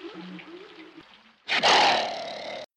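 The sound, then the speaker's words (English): A quiet, low voice murmurs briefly, then a sudden loud lion roar from a film bursts in, a single rough, sustained growl that holds for about a second before cutting off. “To talk to a lion.”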